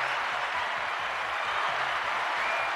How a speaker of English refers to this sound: Wow, that's some big time applause there.